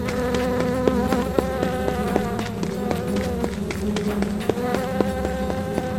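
A dense, steady drone of swarming, stinging bees, their layered buzzing holding at a constant loud level, with occasional sharp ticks scattered through it.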